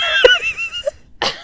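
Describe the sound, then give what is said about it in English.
A drawn-out, raspy wheeze with a sharp catch partway through, a brief pause, then one harsh, breathy cough burst. No talking. “It's just a cough, goddammit.”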